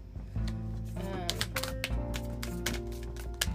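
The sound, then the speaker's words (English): Oracle cards are shuffled in quick, crisp bursts of flicking and tapping, scattered irregularly over a steady bed of soft, sustained background music. “Hello, can I shuffle properly, please?”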